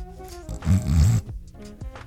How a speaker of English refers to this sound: What's happening? Are you snoring? That's really bad.